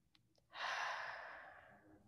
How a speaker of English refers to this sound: And we're just going to take two deep breaths. Breathe in through your nose and out through your mouth.